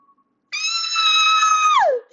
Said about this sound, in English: The girlish sounding screech came from the doorway right behind her.